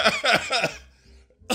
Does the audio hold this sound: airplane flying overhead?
no